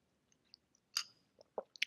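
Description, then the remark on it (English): A quiet sip of iced coffee: a wet slurp in the middle, then a few soft swallowing and mouth clicks, with ice or liquid sounds and no talking. “Like, I have this iced coffee that I will be sipping on frequently, and oh my God.”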